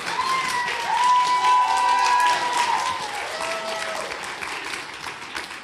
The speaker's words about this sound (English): My my applause was interrupted. Could I please get an applause? Thank you.